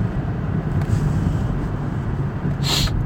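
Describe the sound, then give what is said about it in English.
Steady low engine and road rumble from inside a moving car merging into heavy traffic, with a brief hissing whoosh near the end like a vehicle passing by. No one speaks. “I gotta merge into all this traffic here.”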